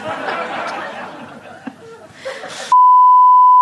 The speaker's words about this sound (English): Just beep it.